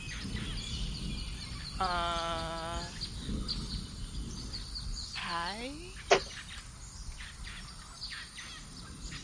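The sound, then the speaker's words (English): A person's voice imitates a snowy owl call: a sustained, wavering screech followed by a shorter cry that slides downward, then a sharp click, over steady background noise. “I have a pet snowy owl.”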